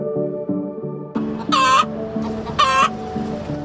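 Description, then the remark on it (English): A hen clucks loudly in a rapeseed garden in Taipei's Tianwu District, with two sharp, harsh squawking bursts rising over a low murmur of people nearby. “A hen clucks loudly, drowning out the sounds of people nearby.”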